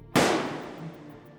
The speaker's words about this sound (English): Just as he walked through the front door to leave, the sound of a 12-gauge automatic shotgun echoed through the air.